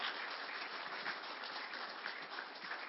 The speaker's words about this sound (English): Amen. Give him a clap. That's it. Give him praise. Amen.